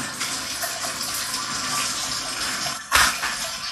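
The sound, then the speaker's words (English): Water runs steadily from an indoor Victory Garden watering system on a 47-minute timer, a continuous hissing spray with a brief louder gush near the end. No one speaks. “I decided to leave it in because when I walked in here, the Victory Garden was going and it's on a 47 minute timer and it has not been 47 minutes since I walked in here.”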